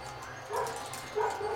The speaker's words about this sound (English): Dang, that dog barking. Got that dog in it.